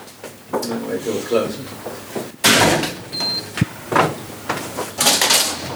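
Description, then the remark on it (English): A short electronic beep sounds after a hand scan, followed by a sharp click and the whoosh of a heavy data center security door opening, with muffled voices talking in the background. “You always need a badge and a hand scanner before you can open the doors, depending on your privilege, of course.”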